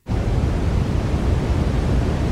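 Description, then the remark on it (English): Steady brown noise, a continuous low roar that starts abruptly and holds at an even loudness throughout, weighted heavily toward the deep end with a softer hiss above it and no voices. “Some say that brown noise serves as the perfect soft,”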